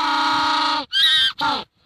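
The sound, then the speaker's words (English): A penguin's mating call: a long, harmonic-rich braying note followed by two shorter, rising nasal honks, loud and alone, sounding much like a donkey's bray. “It is actually a penguin.”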